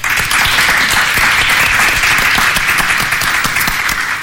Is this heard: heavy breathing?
no